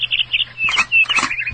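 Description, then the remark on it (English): A bird chirp sound effect: a quick run of bright, high-pitched tweets, then a sustained whistled note and a few more fluttering chirps, fairly loud with no talking. “And we have a tweet here if you want to do a second tweet of the week.”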